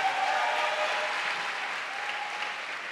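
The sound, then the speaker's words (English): A church audience at BMI applauds steadily to welcome visitors from Uppington, East London and Midrand, a dense wash of many hands clapping at a fairly even level that eases slightly toward the end, with no voices standing out. “Let's clap one more time for all of them.”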